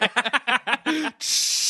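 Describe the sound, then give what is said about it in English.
A voice imitates a hose spraying water to hose down a suit: a few quick vocal bursts, then a sustained loud breathy hiss like water jetting out. “I think it works like a coffin, like that mummies are in, and it just opens, and then he just hoses it down.”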